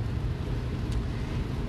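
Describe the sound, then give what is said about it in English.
A steady, dense wash of heavy rain pattering and splashing against the windows of a car driving to Kansas, with a deep constant rumble underneath and no pauses or speech. “And obviously right now I'm driving to fucking Kansas, and it's raining a dick out. So if you hear splashing everywhere, it's not me beating off. It's my windows.”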